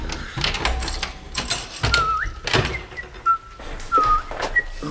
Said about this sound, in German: Bitte nicht pfeifen! Hallo? Du weißt doch, dass ich davon Kopfschmerzen krieg.